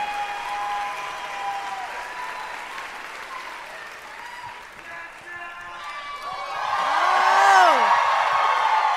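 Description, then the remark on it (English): A crowd claps steadily throughout while whoops and high cheering voices rise above it, the applause and shouting swelling louder in the final seconds, as White House Press Secretary Jen Psaki is welcomed to the stage. “I gave them like $100 each to cheer aloud.”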